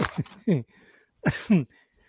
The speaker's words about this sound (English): You see, I'm still carrying the cough.